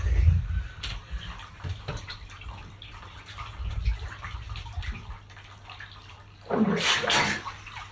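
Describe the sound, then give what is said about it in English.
Bathwater sloshing and dripping with low, muffled rumbles as a man dunks his head under the bathwater to wash, then a sudden loud splash near the end as his head comes back up out of the water. “He dumped his head under for a clean, and as he came back up, I threw it in his face.”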